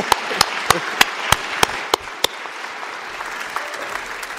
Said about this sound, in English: However, I do believe that our students have done an amazing job, and so I'm going to ask you to do something. Yeah, let's clap for them.